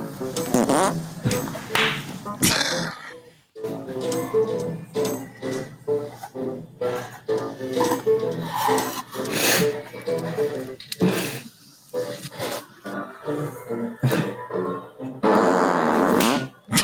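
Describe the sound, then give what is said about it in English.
A man makes a string of loud, sputtering farting noises in quick succession, some long and drawn out, with people laughing and reacting over them. “Oh, this is the fart guy? Yeah, he makes me laugh every time.”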